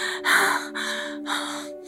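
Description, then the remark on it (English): Breathless panting after a climb up to the edge of a cave: three quick, heavy breaths in a steady rhythm, fairly loud, with a faint steady hum underneath. “She crawled over the edge of the cave and sat down and panted.”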